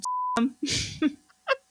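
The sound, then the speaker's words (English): A short, steady censor bleep tone sounds at the start, bleeping out a man's last name, cutting off abruptly before a person continues speaking in quick bursts. “Should I beep out his last name?”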